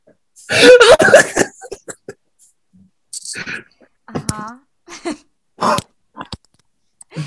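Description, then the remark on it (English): A burst of harsh coughing up close, followed by several shorter, scattered coughs and throat-clearing sounds with brief pauses between them, mixed with some voiced sounds. “So much you made yourself cough.”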